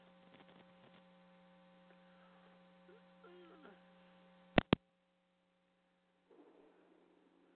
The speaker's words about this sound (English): We just got us a hellacious thunderbolt here. If you heard any static, that's what it is.